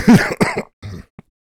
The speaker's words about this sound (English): I think I'm dying. Cough it out.